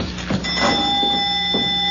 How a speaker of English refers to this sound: Yeah, the bell. The doorbell. It's the same.